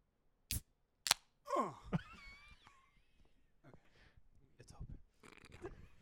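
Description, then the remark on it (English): A beer bottle being opened: two sharp, loud clicks as the cap is worked, then a short falling hiss-like rush, followed by quieter rustling and faint voices. “Use your smooth, soft Chilean hands to open up the beer.”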